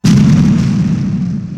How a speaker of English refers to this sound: That was an explosion. If no one noticed, it's been a while since you clicked that button.